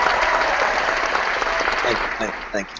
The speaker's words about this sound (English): Thank you for clapping.